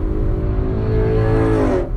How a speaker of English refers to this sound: Dude, you're not a fucking bike. It's a car. Why do you sound like that?